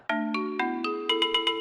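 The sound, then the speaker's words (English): A short, bright musical jingle of plucked, bell-like notes rising in steps over a sustained low tone, ending with a quick run of four rhythmic chimes, with no voices. It introduces a check-in with roving reporter Bubbles for the Underwater Mystery Theater segment. “That music means it's time to check in with Bubbles.”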